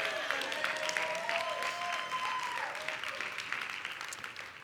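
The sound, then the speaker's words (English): A crowd breaks into sustained applause for the Lord, many hands clapping in a dense, steady patter that holds at a fairly even level throughout, with a faint tonal hum sliding beneath it. “We're going to clap our hands for the Lord,”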